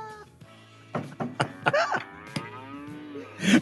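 cow mooing

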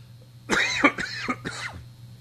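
cough

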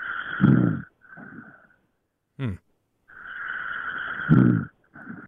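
person snoring

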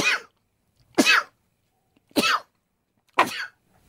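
sneeze

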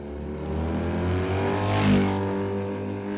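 motorcycle engine revving

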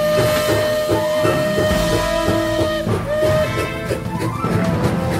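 moving train

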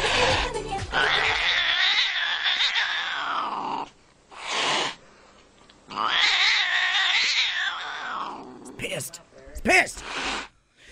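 cat meowing and caterwauling

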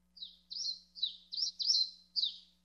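birds chirping

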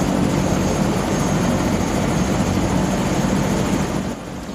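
helicopter flying overhead

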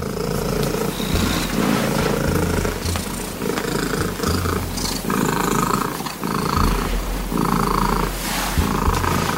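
loud domestic cat purring

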